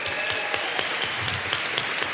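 A crowd claps steadily and continuously as an audience member is invited up on stage, a dense wash of many hands applauding at moderate loudness, with no break.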